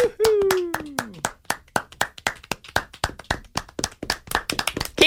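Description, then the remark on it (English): A small studio audience claps steadily for about five seconds, welcoming a guest: sharp crisp hand claps in a fairly even rhythm, opening with a falling vocal whoop that slides down in pitch. “This is the applause that's going to be coming at you when you're on tour, on stage, in front of the people.”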